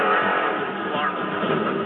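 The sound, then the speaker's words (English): The number 11 trophy truck's engine roars loud during a race near Race Mile 78 as it begins to have engine trouble, a dense, steady revving drone that holds for about two seconds with slight surges in pitch. “But as McCaffrey fights to expand his lead, the number 11 trophy truck begins to experience engine trouble.”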